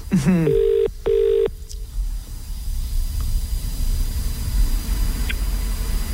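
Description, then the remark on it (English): An outgoing phone call's ringing tone, placed live on air by radio station Mix 106.3 to the salon La Belle Faye Beauty: one double ring of two steady electronic buzzes, followed by quiet line hiss. A brief voice sound comes just before the ring. “Oh, good, it's ringing.”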